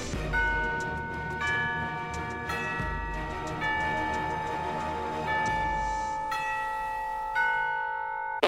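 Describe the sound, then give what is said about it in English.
An elaborate chiming doorbell, rung by visitors standing outside the door, plays a long melodic sequence of ringing bell tones, each strike sustaining and overlapping the next, fairly loud with no talking over it. “God, even her doorbell is crazy.”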